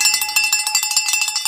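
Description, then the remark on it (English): A bright metallic bell, cowbell-like, rung to celebrate a listener finishing the Detroit International Half marathon in 2:04, rings rapidly and repeatedly in an energetic shaking rhythm, its clanging tones sharp and sustained with no one speaking. “Natsuku says, ring the bell.”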